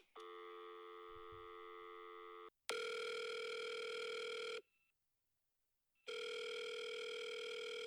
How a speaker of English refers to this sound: Yeah, had quite a funny ringtone there. Are you abroad at the moment? Oh, you're in Australia.